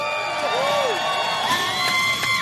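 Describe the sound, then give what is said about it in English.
A crowd cheers and whoops loudly for God, voices overlapping in a sustained roar with rising and falling shouts cutting through. “Could we have one more cheer for God?”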